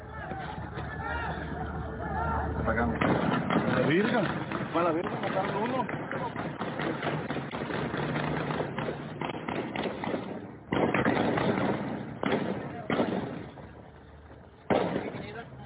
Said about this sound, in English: So would that be people exchanging gunfire? And the answer would be an emphatic yes.